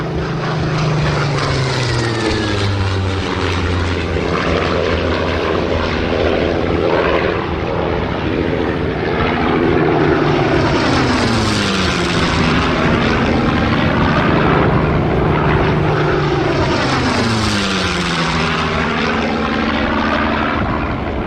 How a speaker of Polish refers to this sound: Nagle, od strony południowej, słyszą narastający szum, a potem warkot samolotów. Od strony Krywania, nad Tatry nadlatuje cała dywizja złożona z samolotów bombowych, myśliwców i cystern.